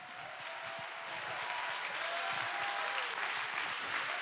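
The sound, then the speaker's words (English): A crowd claps their hands to give God praise in a dense, sustained wash of applause that swells slightly and stays steady, with a faint tonal hum running underneath. “Let's clap our hands and give God some praise.”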